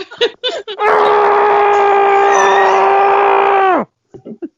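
A single sustained scream into a pillow held in front of the face, held steady for about three seconds at a loud level, with a dull, dampened quality, framed by brief bits of talking before and after.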